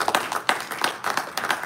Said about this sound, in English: Yes, let's give a round of applause for that.